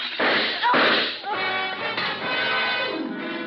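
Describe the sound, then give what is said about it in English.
A revolver barrel crashes through a darkened windowpane behind a bar, shattering the glass, then the revolver fires two loud shots close together near the start, followed by a lingering ringing, tonal tail that slowly fades. “revolver barrel that crashed through the darkened windowpane behind the bar spoke twice.”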